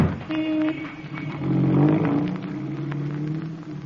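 A car engine rumbles, then revs up and pulls away, its steady drone continuing as the chauffeur-driven car drives off to the Colossus Club.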